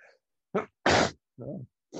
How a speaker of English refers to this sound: Well, just sneezed in the middle of talking, so that's fantastic.